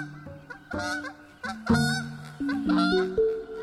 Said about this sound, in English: At dusk, a wild goose heading east.